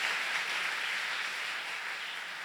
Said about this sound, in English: A big round of applause for Jesus.